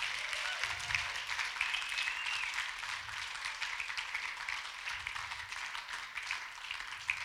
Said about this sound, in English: Why don't we just give them all one big last clap?